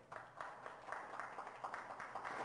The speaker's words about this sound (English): And we have kids in here, and it's awesome to see them in here, isn't it? Clap for your kids.